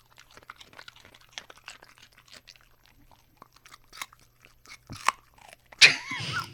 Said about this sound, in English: You're welcome for these dog crunches.